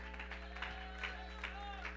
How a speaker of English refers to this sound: Oh, somebody clap your hands and give God praise.